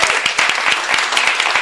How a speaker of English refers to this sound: So thank you very much. This was wonderful. Let's please give him a round of applause.